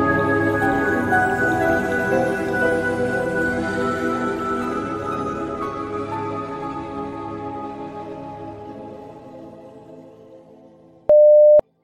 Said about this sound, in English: Forgot to silence my phone. Hang on. I'm sure that was a really important. Yes, it was Dabo Sweeney. It was a really important ESPN update.